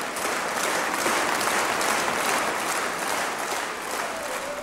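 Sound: concert crowd applause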